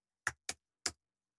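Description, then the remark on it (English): Three crisp, sharp clicks of keys being pressed on a keyboard, tapped in an uneven rhythm with short gaps, with nothing else audible and no one talking. “And he had, sorry, let me just type this in shit.”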